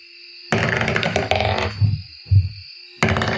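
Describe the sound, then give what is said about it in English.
Dice rattle and clatter across a table in a burst of sharp clicks, then two dull thumps as they settle, followed by another short clattering burst; rolled in a tabletop game to see if a character manages to make a fire. “I think I'm just going to do like a roll and see if I can do it.”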